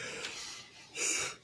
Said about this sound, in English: I do not know why I'm yawning so much today, man.